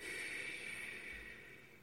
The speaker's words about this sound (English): You also breathe out through your nose, not through your mouth. So breathe in for 3-4 counts and then breathe out for twice as long.